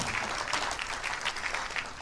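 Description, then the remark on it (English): A crowd claps steadily during a church worship service, a dense patter of many hands at a fairly even level throughout, with no voices standing out above it. “Yeah, come on, you can clap.”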